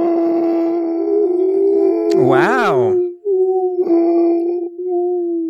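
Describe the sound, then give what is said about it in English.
Several people make long, droning vocal imitations of a whale's roar, with a loud wavering swoop in the middle and sustained tones underneath, plus a brief spoken exclamation. “We all need to do our best whale impression right now.”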